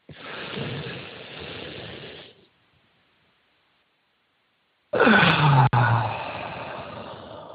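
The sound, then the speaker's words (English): A slow, deep breath taken during a breathing exercise while swaying back and forth: a long airy inhale, a few seconds of silence, then a loud, rushing exhale that slowly trails off. No one speaks. “notice your breathing, and let's make it a little bit deeper. Okay? I'm going to do that with you.”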